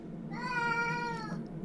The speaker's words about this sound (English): Is that your cat?